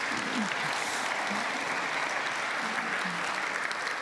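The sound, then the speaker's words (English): An audience claps steadily for the full four seconds, a dense, even wash of many hands with no pauses, loud and sustained, with faint crowd murmur underneath. “You can clap, it's okay.”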